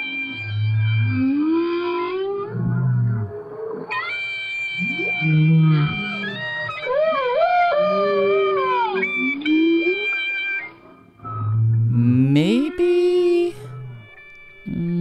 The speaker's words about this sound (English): You can't hear that. Just a little bit of an extended line. It's instead of it's. I mean, it's awesome. No, I love listening to this, but I don't. It just sounds like the whale's still doing whale.